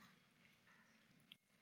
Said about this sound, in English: Psalm 101. I hear a lot of pages turning, which is wonderful.